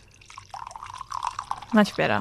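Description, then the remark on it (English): Tea pours from a pot into a cup in a steady trickle lasting about a second, its tone shifting slightly as the cup fills, followed by brief voices at the end. “I'm going to pour the tea.”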